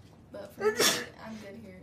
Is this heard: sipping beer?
no